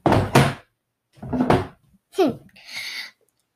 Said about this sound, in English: With all that pressure, what do I do? He slammed his hand down.